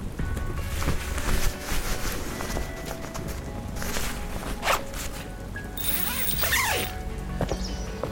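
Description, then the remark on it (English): Busy fabric rustling and shuffling as someone gets dressed, with a quick zipper pulled near the end and a few soft thumps and movement sounds throughout. “Wesley brushed off the malefic entity's taunts and got dressed.”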